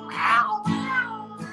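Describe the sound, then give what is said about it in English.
A cat meows, two drawn-out, wavering cries in quick succession with the start of a third cut short at the end, clear and fairly loud with no talking. “I chased a cat around the block today.”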